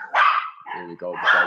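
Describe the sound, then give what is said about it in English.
Small dogs bark and yap in rapid, overlapping bursts, shrill and agitated, loud with hardly a pause between yelps. “Oh, somebody's put that tape of fighting dogs on again.”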